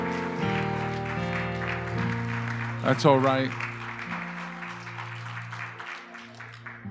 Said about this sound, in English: How many are thankful unto the Lord here today? Come on, let's give God a round of applause.